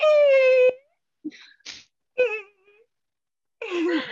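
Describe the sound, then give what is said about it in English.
A person's voice imitates a dolphin with a run of high, squealing whistles and short chirping bursts, separated by brief pauses, fairly loud with no speech. “I can do my own dolphin noise if we wanna use that.”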